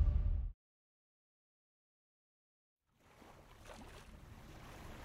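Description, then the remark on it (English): A short burst of deep rumble cuts off into silence, then a steady wash of ocean waves lapping around a ship at magic hour rises and continues at moderate volume to the end. “Exterior, ocean, the ship, magic hour.”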